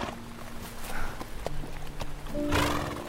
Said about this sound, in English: No kidding. I've only met a few, but... Normally, horses don't even like me. This one seems pretty chill.